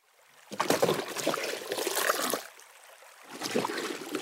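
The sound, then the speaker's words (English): Buckets plunge into river water with a sloshing splash that swirls on for a couple of seconds, then a quieter lull before a second surge of sloshing and trickling water. “So she dunked the buckets.”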